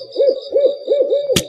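An owl flying overhead outdoors hoots four times in a steady, rolling rhythm, fairly loud, followed by a sudden sharp splat at the very end as its droppings land on a person.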